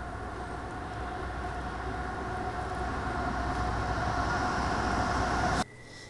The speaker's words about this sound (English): That was a massive freight train. And, you know, it's kind of cool, actually, to see that happening.